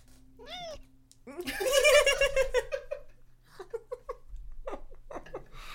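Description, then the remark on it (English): A cat lets out a short meow straight into the microphone, then people burst into loud giggling laughter, which trails off into softer chatter and chuckles. “He just straight up meowed in the microphone.”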